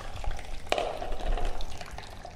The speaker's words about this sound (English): Especially if you're transporting the device elsewhere, it's highly recommended that you take all the water out. Okay, that's, there we are. Going to get the water into this packet.